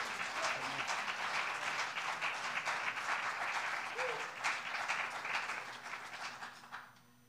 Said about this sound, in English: And let's give him and the Lord a great hand clap.